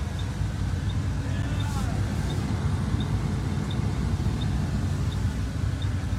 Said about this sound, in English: There's a lot of traffic. And there will be.